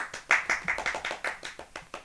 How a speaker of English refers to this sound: No, that was weak. That was a weak clap, but I appreciate we're it honored, all the same.